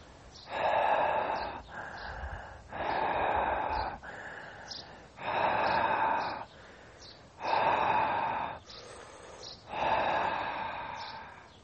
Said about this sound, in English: Well done, keep on breathing.